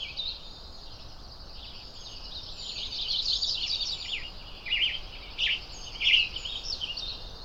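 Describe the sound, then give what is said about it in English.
Raspy, short call notes from a western tanager high up in the trees sound repeatedly at irregular intervals, fairly faint, over a steady hiss of outdoor background noise. “Hear those raspy, short notes? There. These birds are so colorful, but hard to see way up in the trees.”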